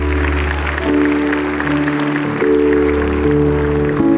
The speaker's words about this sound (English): Come on and give the Lord a hand clap.